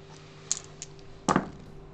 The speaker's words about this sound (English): This roll is with 4 dice. Oh, 4 dice. 2. This one is with 4 dice.